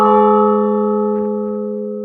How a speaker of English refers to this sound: And we see him moving for the giant hammer, which would strike off the bell in the clock tower. And as the tremendous reverberation bursts in the tower room... Yep, Robin's been successful. He struck the bell with a hammer, this giant...